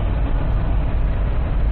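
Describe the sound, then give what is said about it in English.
Steady highway road noise: a constant low engine and tire rumble as a car passes, loud and even throughout with no distinct swell, and no voices. “I mean, you maniacs out there would be like, fucking ram into this car that just passed me.”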